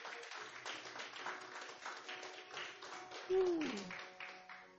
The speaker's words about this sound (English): Oh, give God a round of applause, man.